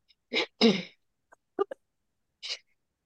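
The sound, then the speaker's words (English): Two strong coughs in quick succession, followed by a few short throat-clearing rasps and one last smaller cough, with brief silences between them. “I'm coughing up the arm here.”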